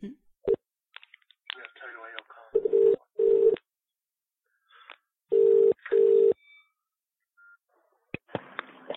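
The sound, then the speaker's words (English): A call placed from a mobile phone as a prank call rings with two steady double-burst ringback tones, separated by a pause, heard clear through the handset; brief muffled talk comes before and after the rings. “Called him from his mobile phone.”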